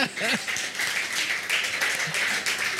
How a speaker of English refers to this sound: It's happy new PFP. Now clap for yourselves.